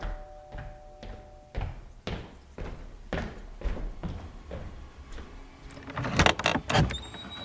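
A long run of steady footsteps thuds at an even pace down a very long entryway of a large house to the front door, ending in a burst of clicks, rattles and a creak as the door latch turns and the door swings open.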